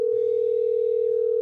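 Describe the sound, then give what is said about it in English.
A steady electronic telephone ringing tone sounds on an outgoing call to check in with a Sandia Prep high school football player in New Mexico, one unbroken hum-like note held clearly throughout at moderate volume, with no voices. “I hopped on the phone to check in”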